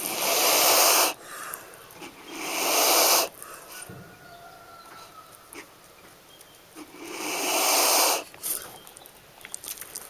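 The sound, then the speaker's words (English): A grumpy wild blue-tongued skink, breathing heavily, hisses three times, loud breathy bursts, two in quick succession and a third after a quiet pause, with no talking. “Oh yeah, that hiss.”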